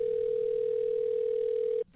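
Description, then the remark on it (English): A telephone line tone sounds at the start of a call to book a women's haircut, one steady, unbroken pitch held for nearly two seconds, clear and fairly loud, then cutting off abruptly. No voices. “Listen to this second phone call.”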